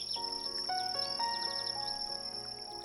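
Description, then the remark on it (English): A steady, high-pitched insect drone of a cicada chorus at night on the banks of Sugarloaf fills the scene, continuous and fairly loud, with scattered chirps and soft sustained tones beneath it. No one speaks. “Lady Cicada?”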